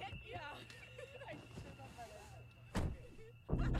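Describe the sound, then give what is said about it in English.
Indistinct voices murmur outdoors as a man loads his car with his family, in a scene from the trailer for the film Split; a car door shuts with a solid thunk, followed moments later by a second heavier door slam. “It's the nice guy loading his car with his family.”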